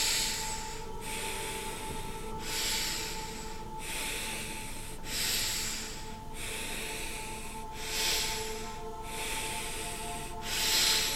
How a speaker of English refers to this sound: Focus on the inhale, all the way in.